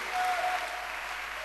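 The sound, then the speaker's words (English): An audience claps hands in a dense, steady burst of applause, many overlapping claps blending into a continuous bright roar with no voices standing out. “Clap your hands for the Lord.”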